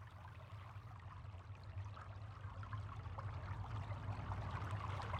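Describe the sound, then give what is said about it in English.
Water from thawing ice and earth trickles and flows steadily with small bubbling splashes over a low rumble, quiet and continuous, growing slightly fuller toward the end, with no voices. “And as the ice is thawing, and the earth is thawing, the water is flowing and the worms are moving.”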